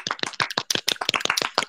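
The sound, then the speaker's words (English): A small group clapping, a quick burst of overlapping hand claps in an irregular, lively rhythm lasting under two seconds, with no talking. “Just a round of applause for everyone who did amazing fan art of this entire thing.”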